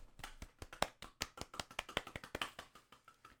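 A soft golf clap: a quick, light patter of roughly twenty small, crisp hand claps in an uneven but steady rhythm, quiet overall with no voices.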